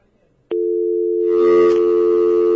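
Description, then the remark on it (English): After a brief quiet moment, a click gives way to a loud, steady telephone dial tone as the phone line to baseball guest John Neese drops; the tone hums on continuously, with a faint wash of background noise creeping in underneath. “We have a dial tone.”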